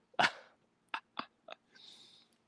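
A dog barks four times in quick, uneven bursts: one loud bark followed by three shorter ones, then a brief high whine trails off. No one speaks.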